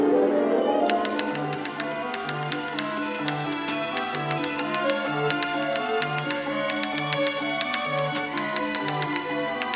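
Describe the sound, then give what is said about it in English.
Rapid, irregular typewriter key clacks rattle crisply over a sustained orchestral texture, with a steady low pulsing note repeating underneath throughout, from Erik Satie's 1917 ballet Parade in a 1954 recording conducted by Igor Markevich. “Pieces like Erik Satie's Witty Parade from 1917, with an orchestra that includes a train whistle and a typewriter.”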